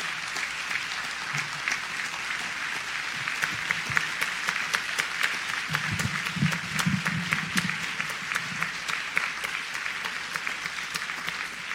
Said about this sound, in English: Can we please have one more round of applause for all of our scholarship recipients, as well as all of our graduates of St. Paul Baptist Church.